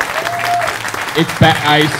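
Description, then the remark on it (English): An audience applauds in a dense, steady wash of clapping for about two seconds, while a voice speaks over the second half. “I mean, like, first off, round of applause, right?”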